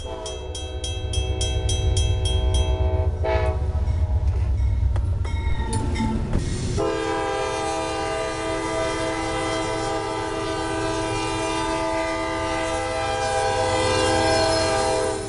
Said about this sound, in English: During the night, our train has rattled and bumped, travelling northwards. We were scheduled to reach Savannah at 1:24 a.m.